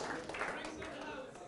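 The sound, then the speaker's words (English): A round of applause from a group, a dense, steady patter of many hands clapping at once for a second and a half, with voices mixed in underneath. “Round of applause.”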